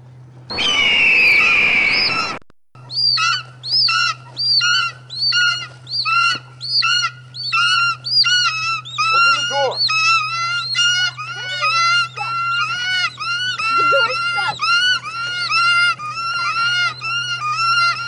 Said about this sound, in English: That's because it then cuts to an abrupt scene of birds attacking the fucking town. And the sound that accompanies that doesn't let up for the remainder of the film.